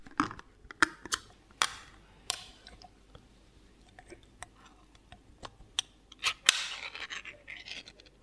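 Two cans of cooked chickpeas being opened and drained: a series of sharp metallic clicks and scrapes at an irregular rhythm, followed by a brief hissing rush of liquid pouring out. No one speaks.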